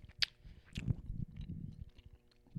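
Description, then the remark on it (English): Wet chewing sounds from someone eating, with irregular crunchy and squishy bites and a sharp click early on, no speech over it. “Oh my god, people are gonna go nuts because I can't think of this and because I'm chewing.”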